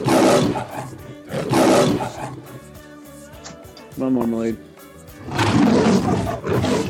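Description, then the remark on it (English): A cat yowls loudly to be let in, three long, rough cries spaced a second or two apart, with a person briefly calling out between them. “Oh, can I let my cat in? Please, please.”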